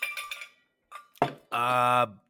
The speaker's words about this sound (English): Sorry, I was taking a sip out of my Yeti. It didn't sound like it went well. A big piece of ice came out, and I had to throw it back in.